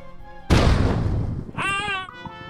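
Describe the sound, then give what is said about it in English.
A steady electronic hum gives way to a sudden, loud explosive blast from a laser cannon shot that rumbles and fades. A brief high, wavering tone follows near the end. “It's times like these that my new laser cannon comes in very handy. Don't underestimate a really well-placed shot.”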